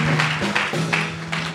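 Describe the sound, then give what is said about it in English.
A crowd claps for the Lord as they take their seats, steadily in a dense, continuous wash of applause with a few louder surges, while a low sustained tone hums underneath throughout. “Well, why don't you clap for the Lord as you take your seats?”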